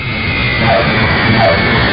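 A jet airplane roars loudly and steadily as it comes in to land, a dense continuous rumble and hiss of engines filling the whole two seconds with no voices.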